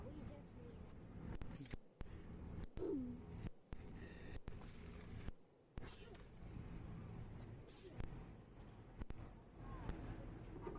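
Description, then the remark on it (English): An owl gives a few short, low hooting calls over a steady background hum, with faint muffled voices and clattering noises in between. “Definitely my favorite bird. Not just because he's so amazing himself, but owls in general.”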